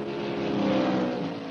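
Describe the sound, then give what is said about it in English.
A steady, droning roar of NASCAR Winston Cup stock car engines at Dover Downs International Speedway in Dover, Delaware, a dense blended rumble that swells slightly and holds throughout, with no voices. “From Dover Downs International Speedway in Dover, Delaware, this is the MRN Broadcasting Company with coverage of the Mason-Dixon 500 NASCAR Winston Cup Grand National Stock Car Race”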